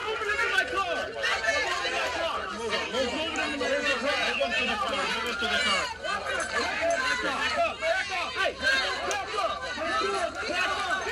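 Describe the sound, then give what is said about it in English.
A loud, dense crowd of many voices talking and shouting over each other at a man and the police during an arrest, a continuous chaotic hubbub with no pauses. “They literally form a human shield to bust through the crowd. They're still shouting at the guy and police.”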